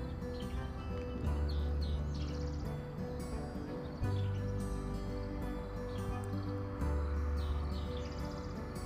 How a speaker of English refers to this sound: I love the sound of the birds.